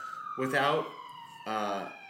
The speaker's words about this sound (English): I forgot to close the window. We got some sirens in New York City.